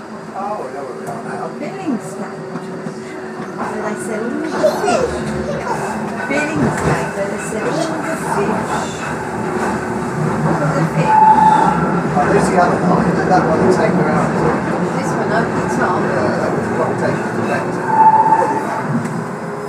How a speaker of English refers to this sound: And coming up on the right is the depot. The depot for the train. This train is for Canary Wharf. The next stop is Poplar.